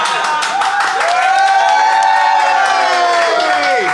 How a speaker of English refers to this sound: Clap, you fuckers!